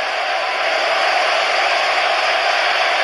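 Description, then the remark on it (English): A huge sold-out arena crowd roars during a Hell in a Cell match in one steady, unbroken wall of noise, loud and sustained for a few seconds, with no single voice standing out and no one speaking over it. “This sold-out crowd is witnessing history tonight. Witnessing the end of an era. Listen to this place.”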